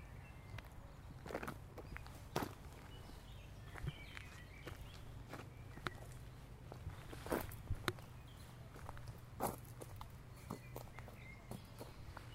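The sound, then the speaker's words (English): Quiet park ambience among trees under a gray sky, with a steady low hum, scattered soft footsteps crunching at an irregular pace, and a few faint bird chirps. No one speaks. “That's 8 seconds where you're just in this park with me. And you hear the little sounds.”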